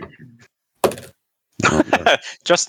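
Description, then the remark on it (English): D6 dice without numbers, kept in the house for making noises, are dropped onto a book: a short dull thunk, a pause, then a longer series of knocking, clattering tumbles that ends with a final rattle. “I have dice in the house for noises.”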